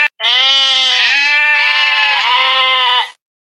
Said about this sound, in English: What was that? It was a bunch of goats.